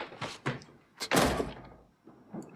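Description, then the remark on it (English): A door bangs heavily against a woman's arm caught in it on the way up: a couple of quick knocks, then one loud thud with a short rumbling decay, and a softer bump near the end. “She gets so worked up, she gets her arm caught in the door on the way up.”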